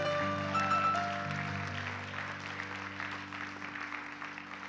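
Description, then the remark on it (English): A church audience claps in a dense, steady wash of applause over sustained low organ chords, the clapping easing slightly toward the end. “Come on, let's give our church a big hand clap.”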